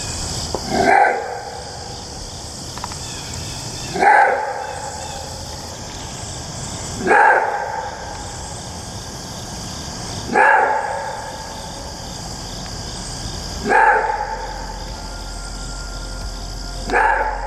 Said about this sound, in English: Except, in all this digging, I managed to find the unique call of these odd creatures. They call it a roar bark. And I think you're about to hear why.